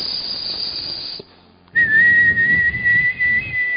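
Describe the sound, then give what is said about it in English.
A breathy hiss, a brief pause, then a long, steady high-pitched hissing whistle used to call people, with an airy, hissing edge that holds for about two seconds. No one talks. “God says that I will stand and I'll hiss to the people.”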